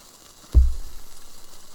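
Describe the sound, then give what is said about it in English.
A sudden low thump gives way to a soft, steady sizzle as cheese is toasted, bubbling and blackening, the crackling hiss continuing unevenly to the end with no one speaking. “Oh, you're toasting your cheese?”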